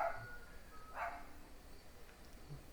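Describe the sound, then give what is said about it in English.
Dogs bark outside at 11 p.m., fairly faint: a quick bark at the start, another about a second later, then only quiet background noise. “Loud ass barking out here at fucking 11 p.m. for no fucking reason.”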